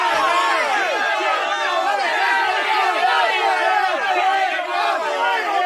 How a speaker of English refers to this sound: Yeah, they blew up on him. They catcalled him. They heckled him. They booed him.